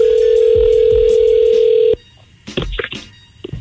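A loud, steady telephone dial tone hums for about two seconds as a call is placed from the radio morning show Ebro in the Morning, then cuts off abruptly, followed by a few short, softer bursts that could be a voice.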